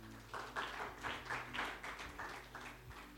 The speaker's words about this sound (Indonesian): Kamu tepuk tangan buat Tuhan.